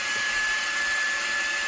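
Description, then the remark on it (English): A blender runs at a steady, high-pitched whir, a loud continuous motor noise with a hissy, airy edge and no change in speed throughout, with no one talking. “What a useful soundbite. 10 hours blender.”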